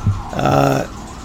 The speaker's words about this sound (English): Here goes the ambulance.